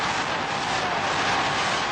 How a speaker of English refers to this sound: Yeah, as you can tell, the crowd at hand there in New Hampshire definitely enjoyed that line. That was the cheers. That wasn't static. They were really digging it.